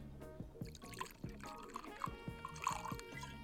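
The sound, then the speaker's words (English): A dram of whisky is poured into a glass, a quiet, uneven trickle with soft gurgling glugs that continue steadily for a few seconds. “So am I just putting a dram in a glass and taking a sip, mate?”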